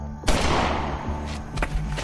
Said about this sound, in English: One of the witnesses heard the gunshot and noticed two people moving very quickly away from the crime scene.